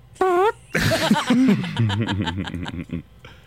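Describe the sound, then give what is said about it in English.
A brief, wobbly buzzing voice imitates the fart-like blat of a trombone from a car commercial, then bursts of lively laughter and giggling follow for the rest of the moment. “doing a car commercial with a trombone making fart noises.”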